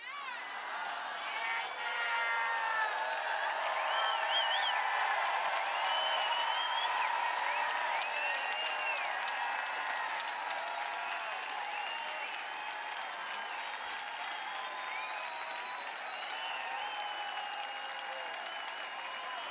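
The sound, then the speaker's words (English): An audience in a church sanctuary shouts and applauds together in a steady, dense roar of clapping and cheering voices that holds loud and constant throughout, with overlapping whoops and calls rising above the noise. “Come on, keep shouting.”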